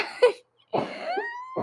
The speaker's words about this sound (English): She's dying. I wasn't even coughing before this. I'm not sick, I promise.